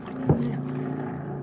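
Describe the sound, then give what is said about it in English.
A steady, low droning hum of propeller plane engines passing overhead, continuous and moderately loud, with a brief louder bump near the start. “There it is. A plane.”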